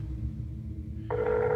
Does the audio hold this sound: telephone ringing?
yes